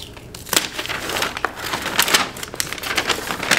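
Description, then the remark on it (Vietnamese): Crinkly, crackling rustles of packaging being torn and pulled apart, a series of sharp bursts with no talking. “Ôi chị ơi, cho em xé một chút xíu nhá.”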